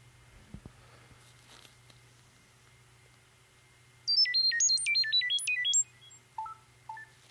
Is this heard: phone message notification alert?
yes